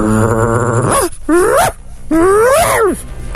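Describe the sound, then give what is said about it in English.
A man's voice imitates a dog, giving a few drawn-out, whining barks and yowls with rising and falling pitch, loud, following a brief sustained tone at the start. “Now, let's find out who is being the dog.”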